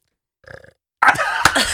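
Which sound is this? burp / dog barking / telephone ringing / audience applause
burp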